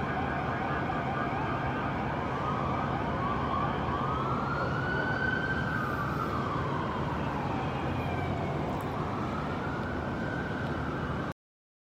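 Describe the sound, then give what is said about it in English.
An emergency vehicle siren wails in slow rising and falling sweeps, loud and continuous over a steady roar of traffic noise, then cuts off abruptly at the end. The sirens are for the rescue of a man hanging from the side of a building. “Oh, and make no mistake about it, those sirens were for him.”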